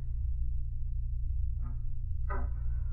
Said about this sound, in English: Oh, it would be a squeaky door.